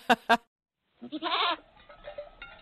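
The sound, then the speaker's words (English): Two sharp clicks open, then a goat bleats loudly and nasally for about half a second, followed by softer, wavering bleats trailing off, as goats eat vegetation. “the goats start taking the vegetation and recycling it right through their gut to pure organic fertilizer and putting it back on the ground.”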